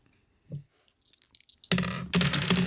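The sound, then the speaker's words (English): Small glow-in-the-dark dice clatter and tick across a hard surface in quick, scattered clicks, then a louder, denser rattling noise follows for the last second, with no speech. “I actually rolled a 6 with my new glow-in-the-dark dice.”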